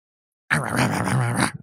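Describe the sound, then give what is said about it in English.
A single low, rough growl lasting about a second, loud, made by a human voice imitating an angry war dog sent into Viet Cong tunnels, with no separate barks. “Get us barking.”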